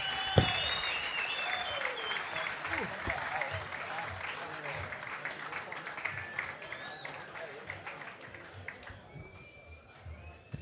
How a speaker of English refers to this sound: One more round of applause for this bloke. Good luck in 2020, brother.